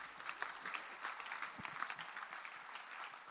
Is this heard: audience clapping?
yes